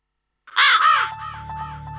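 A raven caws loudly twice, harsh, followed by a quicker series of fainter, echoing caws over a steady low hum and a thin sustained tone.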